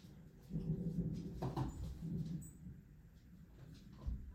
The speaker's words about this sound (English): I got a puppy. If you can't hear him screaming in the background trying to open the door handle, which I don't know why he wants to go back outside because he literally just went potty.